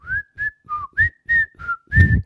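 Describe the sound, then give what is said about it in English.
A father whistles a short, bouncy tune of about seven clear notes as he walks past a door, each note a distinct puff of breath with small pitch slides, fairly loud with no talking. “And Daddy happened to walk right by her door and didn't even notice. And he was whistling.”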